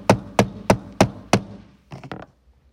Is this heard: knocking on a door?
yes